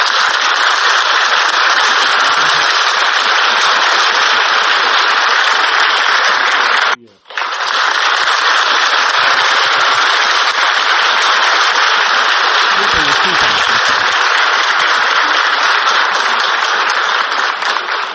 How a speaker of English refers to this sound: Ladies and gentlemen, let's give a big round of applause to my co-host,